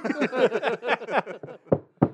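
A voice talks briefly, then two sharp knocks on wood ring out alone, fairly loud, spaced about a third of a second apart.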